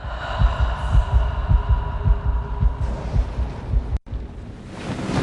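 A woman's heart pumping blood around her body: a loud heartbeat thumps in a steady, quick rhythm of deep paired pulses over a low whooshing hum, then cuts off abruptly and gives way to a soft airy hiss.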